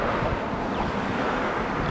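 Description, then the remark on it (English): A steady, unbroken roar of freeway traffic heard from a garden a block away from the freeway, cars and big rigs blending into one dense wash of noise with no distinct passes and no voices. “Back in the Healing Garden, a block away from the freeway, the sound of cars and big rigs pervade the air.”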